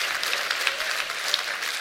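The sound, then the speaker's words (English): An audience claps hands together, a dense, steady patter of many overlapping claps forming continuous applause at moderate volume, with no voices standing out. “Come on, clap your hands.”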